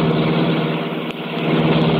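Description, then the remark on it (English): The engine of the Black Beauty, the Green Hornet's sleek, super-powered streamlined car, roars loudly and steadily into life, a dense low rumble with a brief dip midway before surging back at full strength. “The great car roared into life.”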